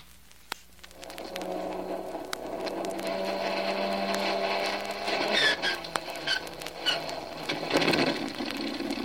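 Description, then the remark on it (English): An aircraft's engine number one cranks and starts after the ignition switch is turned on, its mechanical whir building after a brief click into a steady, loud rumbling drone with a rising whine, with no voices. “Ignition switch. On. Here we go with engine number one.”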